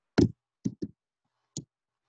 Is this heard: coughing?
no